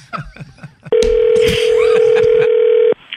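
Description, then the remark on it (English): A loud, steady telephone dial tone hums for about two seconds, then cuts off abruptly, as a prank phone call is placed. Someone talks just before it, and voices continue faintly underneath. “Here's a prank phone call right here.”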